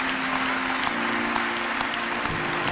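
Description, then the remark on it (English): A church audience applauds steadily during a worship service, giving a hand clap for the Lord, with dense overlapping hand claps at an even, sustained level and a faint low hum underneath. “Let's get a Lord a hand clap.”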